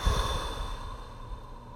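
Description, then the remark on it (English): A person takes a long, deep exhale as part of a deep breathing exercise, steady and fading gradually over about two seconds with a soft airy rush and no talking. “So it's deep breathing, guys. This is a deep breathing method.”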